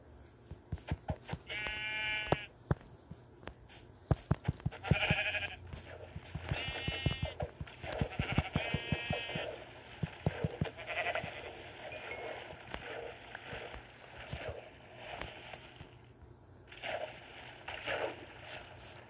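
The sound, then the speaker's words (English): Several sheep bleats, four or five wavering cries in the first half, amid a steady patter of clicking, hoof-like steps and background noise, as a sheep runs away. “Great, that sheep just ran away.”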